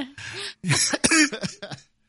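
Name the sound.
cough into the microphone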